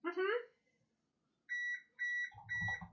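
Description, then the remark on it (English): An oven timer lets out a string of steady, high-pitched electronic beeps in quick pairs, following a brief voice and then overlapped by people starting to talk. “I don't remember setting a timer for anything.”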